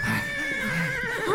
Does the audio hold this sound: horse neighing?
yes